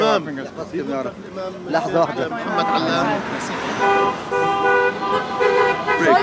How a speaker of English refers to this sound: Cars were driving by honking their horns for him. It's a revolution in Southwest Brooklyn.